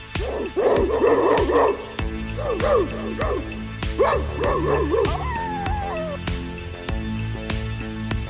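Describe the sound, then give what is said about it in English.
A dog barks loudly in quick clusters of several yaps, pausing between bursts, followed by a falling whine, all over a steady rhythmic backing with periodic beats, as the station ident of Big Barking Dog Alternative Radio, WCRS. “This is Big Barking Dog Alternative Radio, WCRS.”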